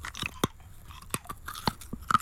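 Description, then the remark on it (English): Crisp crunching of a hard mint being chewed and eaten, with several sharp bites and cracks spread irregularly over a couple of seconds, no talking. “This is using your imagination, your senses, to be able to identify a mint just from the crunching noise of being eaten.”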